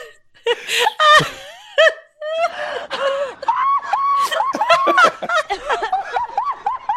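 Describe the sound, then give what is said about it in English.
A man screams in a shrill, high-pitched voice, loud and close, in a string of wavering yelps and wails with brief breaks, some bursts sounding almost like frantic laughter. “Due to that girl scream. That is a guy, actually.”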